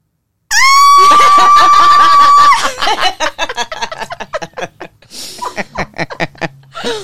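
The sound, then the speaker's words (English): A loud, sustained high-pitched scream lasting about two seconds, followed by bursts of laughter and chuckling. “Why did I scream?”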